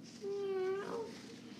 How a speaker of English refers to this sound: Meow. Sure, kitty, kitty. Hey, take it easy, kid. This is a rescue. Man, he's really freaking out.